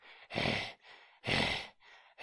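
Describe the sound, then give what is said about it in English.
A voice imitates a character's heavy, rhythmic panting, likened to Gollum: loud, breathy exhales alternating with quieter inhales, about five breaths in quick succession with no words. “And he talks like this. And he breathes very heavy.”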